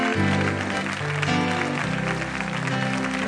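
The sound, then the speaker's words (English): A crowd claps steadily and continuously throughout, with sustained keyboard or organ chords playing loudly underneath the dense applause. “Clap your hands and ask the Lord right now.”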